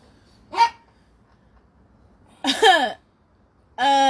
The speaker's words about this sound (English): Is he barking at us? Yes. He wants us to let him in. He's not even out the door.